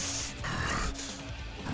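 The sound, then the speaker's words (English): A voice imitates a bear's low growl, a rough, continuous rumbling snarl lasting under two seconds and loud, with no other sounds around it. The growl is for a bear holding a Don fan over its head, echoing in the chambers. “And there's this low grumble growl just echoing in the chambers.”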